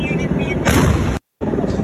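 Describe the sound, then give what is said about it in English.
A bomb squad truck loaded with fireworks explodes in a loud, roaring blast. Crackling, rumbling noise fills the air, cuts out abruptly for a split second, then resumes. “There's all kinds of angles of that thing going off because they alerted the media this was happening.”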